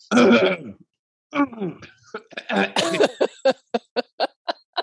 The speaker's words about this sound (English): I cough loudly. And I do it at home because I'm not a traveler.